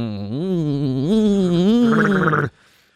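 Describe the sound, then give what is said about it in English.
A go-kart driver imitates a go-kart engine with his voice during a race, a loud, buzzy hum lasting about two and a half seconds. The pitch climbs in stepped revs, then it cuts off abruptly into near silence. “That's, the go-karts don't actually have an engine noise. That's just each driver going,”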